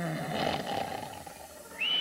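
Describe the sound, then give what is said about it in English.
An elderly man of about 82, asleep on a couch, snores loudly with a rough, rattling inhale, then a high, steady whistle on the breath out, with no talking. “Oh, my, my, there's Grandpa snoring again.”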